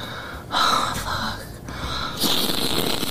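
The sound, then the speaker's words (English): A couple of sharp, forceful snorting inhales through the nose, fairly loud, the second one longer and harsher, with no talking. “That's enough cum snorting for one day.”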